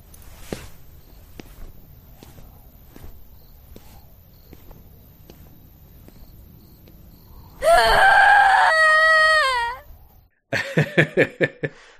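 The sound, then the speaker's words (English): After a stretch of quiet clicking, a person lets out a loud, drawn-out theatrical scream, imitating Shion's melodramatic scream from Kingdom Hearts, lasting about two seconds, followed by a burst of rhythmic, choppy laughter. “It's not the best scream. No. It's a good attempt.”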